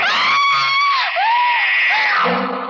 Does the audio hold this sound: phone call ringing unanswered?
no